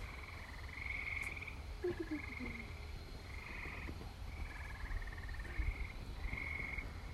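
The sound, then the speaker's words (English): A loud chorus of tree frogs giving mating calls over and over, each call a short, high, buzzing trill repeating about once a second against a low outdoor rumble, with no one speaking. “Tree frogs trying to make babies over there. They're so loud.”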